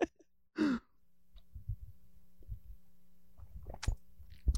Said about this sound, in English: Oh, wow. That's really good. I don't know why I coughed.